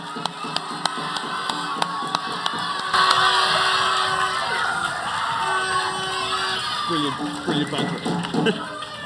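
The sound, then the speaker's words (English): A crowd at a quiz breaks into cheering and shouting for the twelve people sitting on the stage, with whoops and yells rising over broad, sustained noise that swells after a few seconds and carries on loudly to the end. “So if you could all give them a big round of applause just before we start.”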